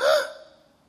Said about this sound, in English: And as she looks in her bag, she gasped.